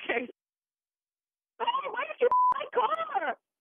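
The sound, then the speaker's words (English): A single short electronic telephone dialing tone, steady and mid-pitched, framed by sharp clicks, sounds briefly between stretches of people talking, as an incoming call is three-wayed in from a radio station. “Three-way the call in, and we'll sit back from the radio station and just listen in, all right?”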